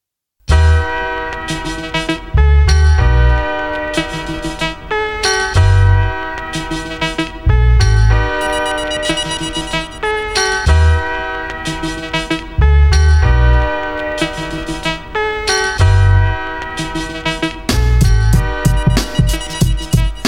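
A hip-hop song plays: booming bass kicks land in a steady repeating pattern beneath a loud, ringing bell-like melodic loop, with no voices in this stretch.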